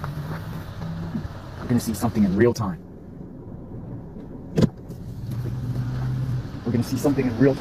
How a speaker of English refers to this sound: I hear the cars coming, so let me reverse.